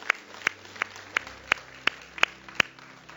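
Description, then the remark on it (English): An audience claps hands in unison as praise, eight sharp, crisp claps falling on a steady, evenly spaced beat over a low murmur of background noise, with no voices. “Everybody say, can we give him one more hand clap of praise?”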